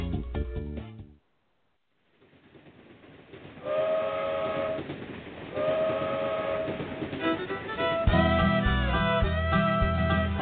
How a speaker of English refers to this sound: The bluegrass trains are coming from Beaverdale down to Alabama. The bluegrass trains are coming. Bluegrass trains are coming.